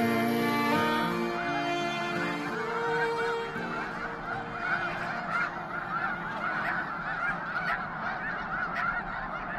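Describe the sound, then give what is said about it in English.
A huge flock of snow geese on migration in the Rainwater Basin region of Nebraska honks continuously, hundreds of overlapping nasal calls forming a dense, loud chorus that fills the scene without pause. “We leave you this week with the sounds that snow geese make, lots of snow geese.”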